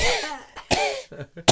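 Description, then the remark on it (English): A voice imitates a dry, hacking cough brought on by inhaling Cajun seasoning: a few sharp coughs in quick, uneven bursts, each a short harsh burst of breath with brief gaps between. “And it's the driest cough.”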